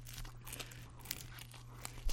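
Someone eating pizza near a microphone: quiet, irregular crackling and crunchy chewing bursts with soft crinkly textures, ending in a slightly louder bite. No one speaks.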